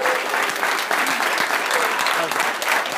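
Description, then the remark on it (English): Sustained applause from a live audience at the Alpha Tau Omega National Convention in Orlando, Florida, a dense steady clatter of many hands clapping at once, fairly loud and continuous for the whole stretch with no voices standing out. “Let's have a round of applause for everybody here”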